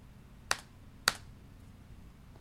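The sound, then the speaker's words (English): Two sharp plastic key clacks, about half a second apart, as the spacebar on a keyboard is tapped twice to confirm, against a quiet low hum. “After you have put this information into the software, hit the spacebar on the keyboard that you are using twice to confirm to me that you have done so.”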